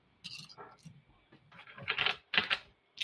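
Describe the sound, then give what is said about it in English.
Plastic dice clatter and click as a player scoops up the right number of dice and shakes them, followed by a couple of bright rattling bursts as they tumble, fairly loud. “I got to get the right number of dice here.”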